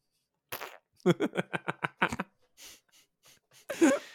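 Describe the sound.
A voice blows a rapid series of wet, sputtering mouth-made raspberry fart noises, about eight short pulses in a row, followed by a few quieter puffs and one final louder blurt.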